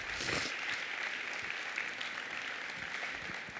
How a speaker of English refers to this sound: Let's give them a round of applause too. Thanks, guys.